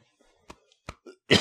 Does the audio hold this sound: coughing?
yes